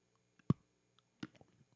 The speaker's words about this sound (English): Now I'm going to taste this salted chocolate crunch.